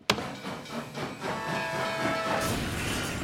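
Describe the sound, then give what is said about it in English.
A fast freight train rushes past, a steady roaring rumble with hissing air and metallic rattling, swelling louder toward the end. “I can see how Apple here might feel like jumping in front of a speeding freight train.”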